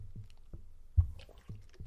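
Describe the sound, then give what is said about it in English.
Someone drinks kava from a cup, with a series of soft, low gulps roughly every half second, one louder swallow in the middle, and faint wet slurping between them, quiet. “allow me to thank Benjamin Daniel Morris Chestnut the 13th for the kava I am drinking on this week's episodes.”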